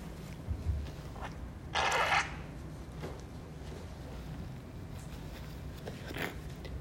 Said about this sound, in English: Let me blow my nose for a second.